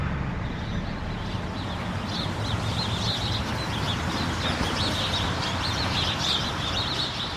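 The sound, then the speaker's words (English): A dense chorus of English sparrows chirps continuously in the trees just outside rest stop doors in the morning, many overlapping short tweets over a steady low rumble of traffic or background noise. “English sparrows are congregating like crazy in the trees just outside the rest stop doors.”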